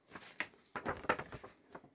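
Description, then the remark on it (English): A paper liner-notes sheet with images from a film on the back being unfolded, with several short crinkling, rustling bursts spread across two seconds, fairly quiet and with no one talking. “So let's open this up, have a look at the liner notes.”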